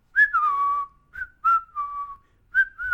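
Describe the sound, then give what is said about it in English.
Someone whistles a cheerful tune, a string of clear, pure notes that slide between pitches in short, bouncy phrases with brief pauses, and no talking is heard over it. “Oh, that's an awfully jolly tune.”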